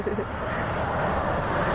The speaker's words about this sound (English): over here we're talking and then a car goes by